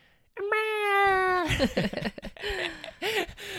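A baby cries out loudly, starting with one long, steady wail that lasts about a second, then breaking into shorter, choppy yells with rising and falling pitch.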